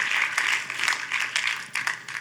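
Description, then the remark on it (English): A crowd applauding steadily to thank Jesus, a dense wash of many hands clapping at once with a few sharper claps standing out, moderately loud and with no voices over it. “Come on, let's applaud and thank Jesus for his spirit today.”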